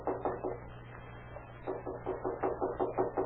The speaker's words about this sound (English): Then at the home of Aligo Ortega, a feeble knock is heard at the door.